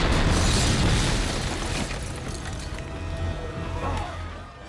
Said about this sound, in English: Here, coming up on this next scene, where Jackie walks out of the office. This is a great, really great explosion. Andre Ellingson, who's our special effects coordinator, he worked for Mike Monardis, did an amazing explosion here.